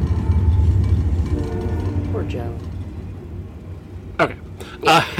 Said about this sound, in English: I forgot that the train was going to come by.